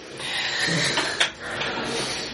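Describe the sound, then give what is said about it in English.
The door of a tower elevator with a wrought-iron-like roll cage slides along with a steady mechanical hiss, then a short clunk as it reaches its stop, followed by a softer rumble. No one speaks. “Ooh, an elevator.”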